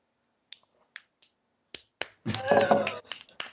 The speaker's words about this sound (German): Genau so macht man da, genau, ne? Jawohl. Schon das rhythmische Klatschen. Definitiv, das Einklatschen.